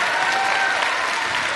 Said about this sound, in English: Oh, somebody give the Lord a clap on.